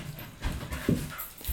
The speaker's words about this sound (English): My wife's just come home, so the dog's barking.